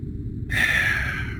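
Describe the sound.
A single loud, raspy snore imitated by a voice, one drawn-out breathy rasp lasting about a second, alone over a low background rumble; it imitates a man who has sat back down and is snoring loudly, sprawled on his desk.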